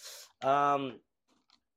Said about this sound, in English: But I make sure I put a lot of water in me, which reminds me, I probably should take a sip because I haven't taken a sip in a couple hours.